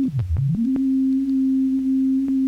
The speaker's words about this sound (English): It's made it go faster. But it's not a bad sound at all. I mean, digital tones are not bad.